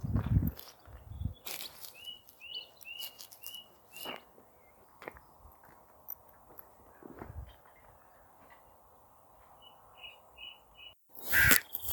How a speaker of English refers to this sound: So now there's a skylark and a crow